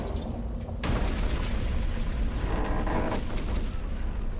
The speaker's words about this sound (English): I ducked down as the rocket hit somewhere to our left, knocking us onto our side. Black smoke filled the Hummer, but I didn't care how badly everything hurt at that moment.